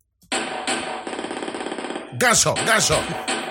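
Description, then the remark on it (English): A rapid burst of automatic gunfire rattles steadily and loudly for nearly two seconds, then an excited voice takes over and keeps talking. “Gunshot.”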